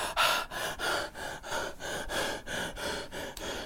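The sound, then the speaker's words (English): A voice imitates the heavy, rapid breathing of someone doing push-ups: about nine loud, harsh breaths in a steady panting rhythm, with no talking. “You sitting there breathing.”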